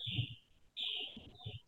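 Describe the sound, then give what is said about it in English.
High, steady chirping from pet birds rings out in two bursts, with a short gap between them, over low background rumble and no speech. “MJ has birds, bro. She has birds.”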